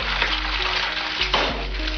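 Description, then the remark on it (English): An egg sizzles in a frying pan, a steady crackle of hot oil that runs throughout, with a brief louder pop and hiss partway through. No one speaks. “The message was, doing drugs will fry your brain, just like that sizzling egg in the pan.”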